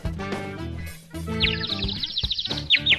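Rapid, high-pitched chirps trill in quick bursts through the second half, bright, over a busy, tonal layer of lower sound that fills the whole stretch.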